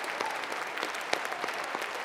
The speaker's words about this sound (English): Have you ever in a Lutheran church stood and applauded for Almighty God? We're going to do it right now. Let's stand. Stand. And let's applaud our God.